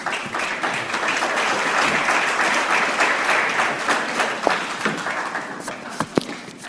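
Sustained audience applause, a dense steady wash of many hands clapping at even loudness throughout, with a few sharper individual claps standing out near the end.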